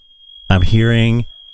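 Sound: smoke detector alarm beeping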